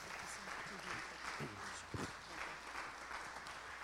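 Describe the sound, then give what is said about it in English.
An audience claps steadily in a hand clap of praise to God, a dense wash of many hands together, with scattered voices murmuring underneath and a few louder individual claps standing out near the middle. “If you are, I want you to come on, go ahead and give him a hand clap of praise.”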